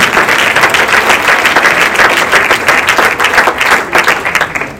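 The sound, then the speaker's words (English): A worship audience claps hands unto the Lord after a prayer in sustained, dense, loud applause, a steady wash of overlapping claps that continues for several seconds without any talking. “Let's clap our hands unto the Lord one more time.”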